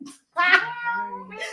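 A cat gives one long, drawn-out meow, fairly loud, its pitch sliding downward as it trails off, with a brief soft noise just before it.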